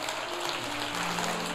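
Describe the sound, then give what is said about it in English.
A church audience gives the Lord a hand clap in a dense, steady wash of applause that holds for the whole moment, while low sustained musical tones hum quietly beneath it. “Now give the Lord a great hand clap for that.”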